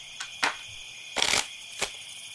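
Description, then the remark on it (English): Playing cards being shuffled: a few short, crisp papery flicks and one longer riffling burst in the middle, over a steady faint high-pitched hiss, with no talking. “You can hear me shuffling the cards.”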